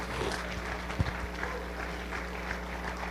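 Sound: audience applauding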